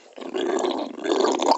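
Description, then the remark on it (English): A dog growls angrily in a low, sustained rumble, rising in intensity midway and continuing steadily, fairly loud with no talking. “So bulldog ants actually mad dog.”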